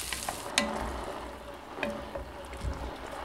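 Carrots, onions and celery sauté in a pot with a steady, hissing sizzle, broken by a couple of sharp clatters as ingredients such as diced potato drop in and get stirred. No one speaks.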